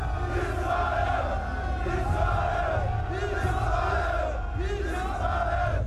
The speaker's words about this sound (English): I really enjoyed the final scene where Rahab and the soldiers, and everybody is looking up at the sky and shouting and chanting Israel.